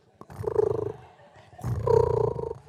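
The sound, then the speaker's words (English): A voice imitates a cat's purr in two rumbling, throaty bursts, moderately loud, with a short pause between them and no other sounds around, mimicking how Pastor Karen purrs while resting. “She doesn't snore, she purrs.”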